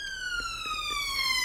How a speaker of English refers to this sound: Siren.